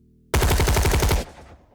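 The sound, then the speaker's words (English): A loud, sustained burst of rapid automatic gunfire from a barricade, pinning fighters behind a concrete barrier around a tank, shots hammering in a fast, even rhythm for about a second, then cutting off into a fading rumble. No voices. “A storm of bullets from the barricade pinned the Trishul operatives to their defensive position behind the concrete barrier around the tank.”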